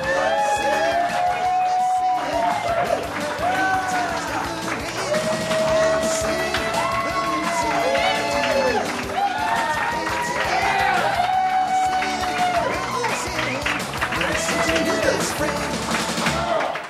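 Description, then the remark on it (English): A live audience at NerdMelt cheers and whoops loudly and continuously, with many overlapping voices, rising and falling shouts, and scattered clapping throughout. “Lively crowd. I love it.”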